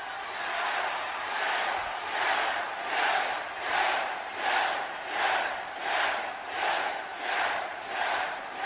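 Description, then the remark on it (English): A large WWE wrestling arena crowd cheers and chants for a wrestler in steady rhythmic waves, roaring about twice a second, with no single voice standing out from the dense wall of noise. “You hear that? The reason they cheer for him is because he works and he earns it.”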